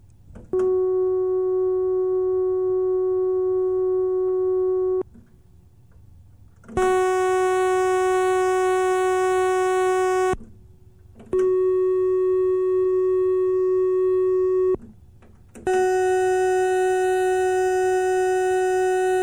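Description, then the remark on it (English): Synthesized sawtooth and pulse waveforms, played to demonstrate differences in timbre: steady held tones at one pitch, played as four separate notes of a few seconds each. The first is mellower; the later three sound bright and buzzy. “Note that both the sawtooth and pulse waves sound somehow brighter.”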